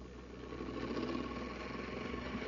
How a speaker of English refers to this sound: did you ever hear the robot mastermind work? It's the amazing Space Patrol machine with a mechanical brain